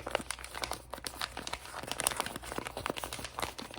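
Continuous crinkling of wrapping paper on a present, fairly quiet, with dense irregular crackles and rustles running throughout, no voices present.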